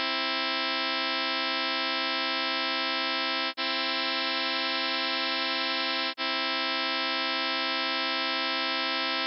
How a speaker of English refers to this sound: So I'm just going to play the difference between a pure major third and an equal one. Pure, then the equal one we used to, and then back to pure.